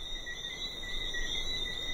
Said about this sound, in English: It was Friday night, 8 o'clock. The frogs were chorusing outside.